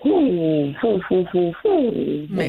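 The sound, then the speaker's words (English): A person's voice imitates a great horned owl, giving about five low, breathy hoots in a rhythmic series, fairly loud with no other sounds around it. “That was an owl call.”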